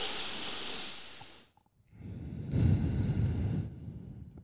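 Slow breaths drawn through the nose: one airy, hissing breath, a brief silent pause, then a longer, fuller and louder breath. No one speaks.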